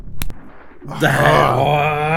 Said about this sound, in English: You know how angry I am? I'm going to snap one of my chocolate fingers in half. Here we go.